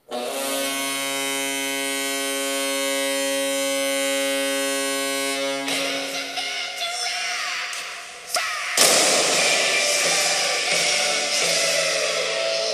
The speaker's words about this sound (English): It's time to fire the cannon.